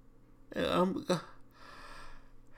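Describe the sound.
A single loud yawn: a voiced, drawn-out breathy stretch that ends in a short exhale, followed by quiet room tone.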